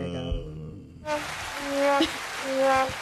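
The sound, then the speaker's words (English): After a brief tonal opening, a dense, steady patter swells in and continues: many quick hand claps made as a sound effect to resemble rainfall, with faint thin tones drifting above it. “Anyway, hey, do that sound like rain or hand claps? When you do it loud, it's definitely rain.”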